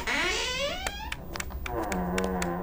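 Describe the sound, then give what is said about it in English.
An old door creaks open in a long, groaning whine that slides in pitch, broken by sharp ticks and clicks, then settles into a lower, wavering groan. No one speaks. “Okay, I think we have to enter here through this creaky old door.”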